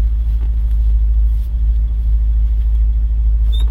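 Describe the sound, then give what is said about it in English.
A car engine idles with a steady, deep, loud rumble that holds even and unbroken throughout, with no voices over it. “Yeah, it purrs so nice.”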